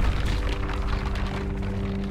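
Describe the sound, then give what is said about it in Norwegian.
A rocket explosion as the military fires a rocket at the back of a shopping centre in Kenya: a loud, sustained roaring rumble with heavy low-end boom that stays steady and powerful throughout, with no voices present. “Men vi vet at militæroperasjonen fortsetter helt fram til mandag, altså i 3 dager, før militæret avfyrer en rakett mot baksiden av senteret.”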